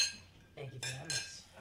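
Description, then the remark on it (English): Glasses clink together in a toast, two bright ringing taps in quick succession, with faint voices murmuring underneath. “So cheers, gentlemen.”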